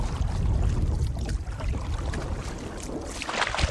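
A canoe moving up a river, with steady water rushing and splashing around the hull and occasional paddle strokes, no voices.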